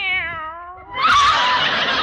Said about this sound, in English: Meow. Oh, there you are, you cute little kitten.